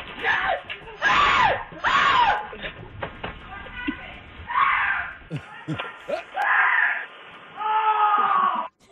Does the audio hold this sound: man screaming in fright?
yes